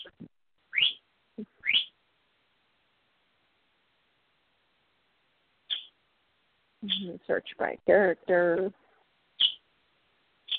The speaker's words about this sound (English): Little bird, go to bed.